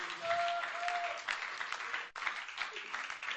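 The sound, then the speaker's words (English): A church audience claps their hands in praise of the Lord, a dense, steady wash of applause filling the full length with a brief dip midway, and a few faint voices calling out beneath. “Let's clap our hands and praise Him right now.”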